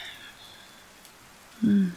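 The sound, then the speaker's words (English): Soft, steady rain pattering lightly on leaves, faint, with a brief low humming tone rising over it near the end. “And the quiet tap, tap, tapping on the leaves.”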